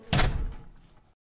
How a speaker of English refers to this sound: And they basically back out and gotta go to shut the door behind you.